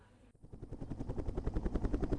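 A corporate helicopter hovers overhead above a white medevac helicopter as the sun sets, its rotor blades thumping in a fast, steady chop that grows louder and fuller over a couple of seconds, with no voices.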